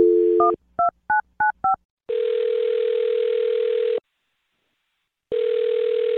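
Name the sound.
telephone number being dialed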